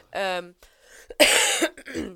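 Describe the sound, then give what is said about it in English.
A person with a residual cough after being ill coughs: a short voiced throat sound, a pause, then one loud, harsh, raspy cough burst that trails off with a rough exhale. “I've just got, like, a residual cough.”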